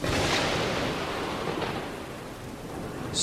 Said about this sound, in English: Darkened sky ignites. Rolling rumble booms and cracks.